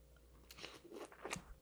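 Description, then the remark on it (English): Someone bites into a pear and chews it, with a few wet, crunchy bursts in quick succession and no talking. “This is, like, creamy as fuck”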